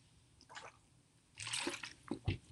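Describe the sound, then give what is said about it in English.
Someone takes a drink of water during a live radio broadcast: a few wet sips and slurps followed by a couple of gulping swallows, with no talking. “So when you add all this up, pardon me, I had to have a drink of water here.”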